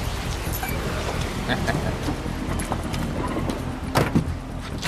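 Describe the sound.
Someone gets into an unlocked parked car, with rustling movement and a sharp door thump near the end, set against steady outdoor background noise and faint murmuring voices.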